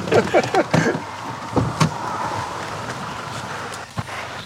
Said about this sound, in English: There's a car arriving.